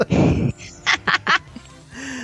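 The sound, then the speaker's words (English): A raspy, nasal Donald Duck cartoon voice, in a Nutcracker Suite show with Mickey and Minnie, squawks out a long garbled quack, then three quick sputtering quacks in a row, loud, followed by a faint low tail. “It's Donald Duck.”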